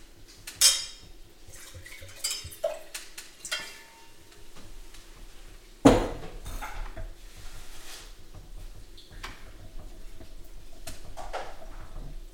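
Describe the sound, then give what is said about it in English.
Wine is poured into a glass: a few sharp glassy clinks, then a sharp knock and a steady, soft trickling pour lasting several seconds, with no voices. “Your glass is empty, let me fix that.”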